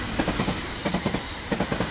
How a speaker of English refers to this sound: Hours later, the train arrived at the town.